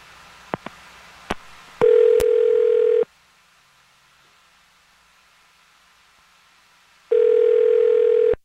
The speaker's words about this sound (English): Here we go. I'm going to dial the phone number right now.